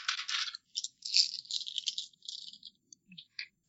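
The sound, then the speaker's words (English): Dice rolled for invisibility in a tabletop game rattle and clatter across a hard tabletop in a busy burst, then a few scattered clicks as they tumble to a stop. No voices. “All right, roll for invisibility.”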